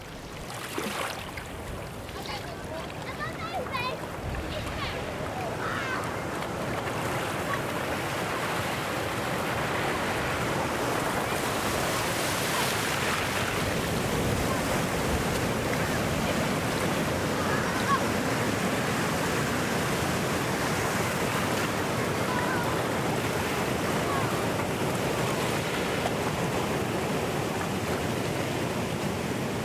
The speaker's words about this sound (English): All becomes quiet, save for the deafening roar of the Celtic Sea.